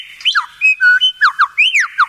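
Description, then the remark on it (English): A male lyrebird, giving his courtship mating call from a platform built from a mound of dirt, imitates a kookaburra's call: a quick, loud run of bright whistled notes that swoop up and down in pitch, repeating in uneven bursts with no voices. “He's actually mimicking here the song of a kookaburra bird.”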